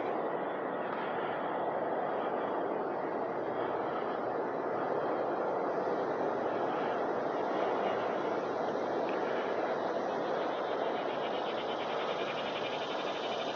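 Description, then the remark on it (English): A steady, dense drone of cicadas buzzing, holding an even, fairly loud level throughout with a bright, shimmering high edge and no pauses or voices. “Boy, the sound of the cicadas really brings back some memories of going to Arkansas, going camping, walking in the heat, and hearing cicadas.”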